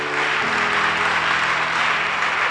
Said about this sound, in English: Oh, yeah, only the choir is clapping. They can.